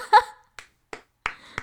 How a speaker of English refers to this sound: Yeah, slow clap, slow clap.